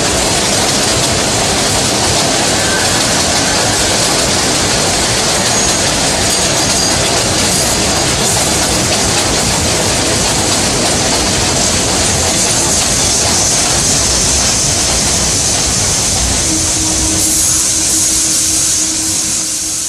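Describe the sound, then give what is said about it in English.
An express subway train, next stop New Lots Avenue, roars along the rails at full speed, a loud, steady rumble with rattling wheels and faint metallic squeals. “Express train. The next stop is New Lots Avenue.”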